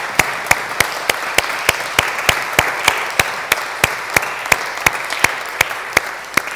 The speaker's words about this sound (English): But just for this moment, I wondered if you'd maybe give them a round of applause to thank them for their time and their service here with us.